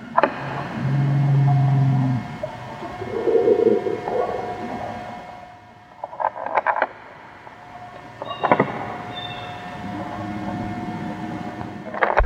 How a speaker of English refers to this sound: Just in case you're out there and you kind of got confused by the other sounds, here are just the growls alone, and we'll play them right now.